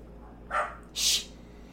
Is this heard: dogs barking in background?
yes